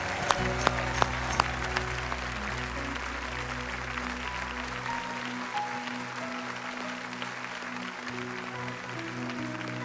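A large audience at a church worship service applauds steadily, dense clapping filling the room over sustained music tones, with a few sharper claps near the start and the applause continuing throughout.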